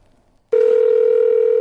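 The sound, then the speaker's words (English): A steady, loud telephone dial tone starts abruptly after a brief near-silence and holds unbroken to the end, opening The Late Show with Stephen Colbert's parody version of President Trump's phone call with Ukraine's leader. No keypad beeps or voices are heard. “And finally, as we await transcripts of President Trump's phone call with Ukraine's leader, The Late Show with Stephen Colbert provided their version of events.”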